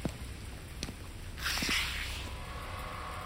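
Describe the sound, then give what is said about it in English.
Fingernails scrape across pavement in one rough, hissy rasp lasting about half a second, with a few faint ticks and taps before it over a low, quiet background rumble. “A scraping sound. Is that his fingernails against the pavement?”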